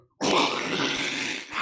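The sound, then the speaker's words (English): A person's voice imitates a jungle cat's roar in one loud, raspy, sustained burst that starts abruptly after a short silence and tapers off slightly at the end. “Give me a Jungle Cat Roar right here”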